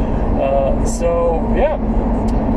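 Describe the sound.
Steady, loud low rumble of road noise from inside a moving vehicle crammed in the slow lane with a huge truck behind it, continuous throughout, with a few faint muffled voice-like tones drifting over it.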